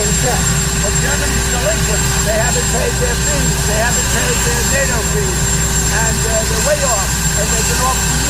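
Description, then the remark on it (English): A loud, steady helicopter drone with constant engine hum and rumble fills the whole recording of a video being played back, while a person speaks underneath it, the voice partly buried by the noise. “Let's see if this portion of the video, because we're watching it together, has less helicopter noise.”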